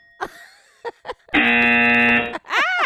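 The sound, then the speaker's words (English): A few quick, bright dings from a button bell on a phone ring out with a lingering metallic tone, then a loud steady electronic buzz holds for about a second before warbling, sweeping electronic tones. “She's having a ding fun with the button bell.”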